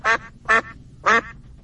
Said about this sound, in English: Oh, that duck.